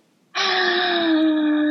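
A single long, voiced yawn that starts abruptly after a brief silence and stretches out as a loud, steady, slightly falling groan, with no talking.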